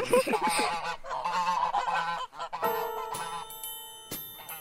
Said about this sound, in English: But I hate geese. By watchdogs, if somebody's coming, they just make tons of noise.